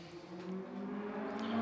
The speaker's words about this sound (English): There goes Strahd now. On his motorcycle. On his Strahd cycle. It's like colored red. Hell yeah. It's like an Akira type of motorcycle. Oh, it's sporty.